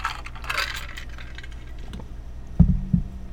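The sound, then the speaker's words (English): A metal water bottle clunks twice on a particle board desk, two low hollow thuds about a third of a second apart, preceded by some light metallic clinking and rustling. “It's metal water bottle on a particle board desk, so it does make a little sound every time.”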